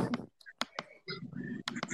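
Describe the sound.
A few sharp keyboard clicks sound in quick, uneven pairs, close and fairly crisp, over low murmured voices in the background.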